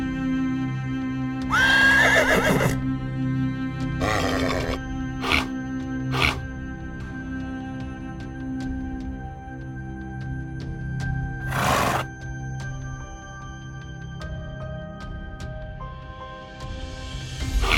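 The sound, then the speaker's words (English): A horse whinnies shrilly, then heavy hooves of panicking horses stomp and bang on the aluminum floor of a trailer in several loud, irregular bursts, with a low hum and faint restless shuffling between the crashes. “I couldn't see anything beyond swooshing shapes or hear anything except the explosions of heavy hooves panicking on aluminum flooring.”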